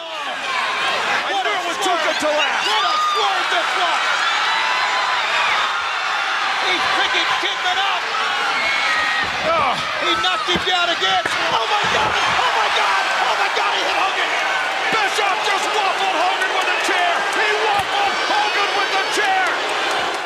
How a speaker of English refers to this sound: Eric hit him in the head with a chair